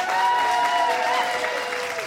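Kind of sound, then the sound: crowd, audience applause voting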